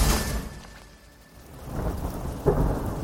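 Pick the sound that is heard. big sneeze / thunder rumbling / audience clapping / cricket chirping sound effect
thunder rumbling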